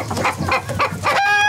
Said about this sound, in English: What's that? It's a chicken.